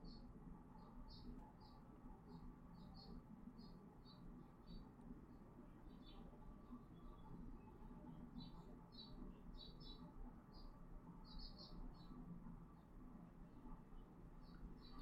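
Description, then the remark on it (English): Birds chatter outdoors at a new bird feeder in quick, high chirps that come in scattered bursts throughout, fairly faint over a steady low background hum. “Do you hear the gay chatter from outside?”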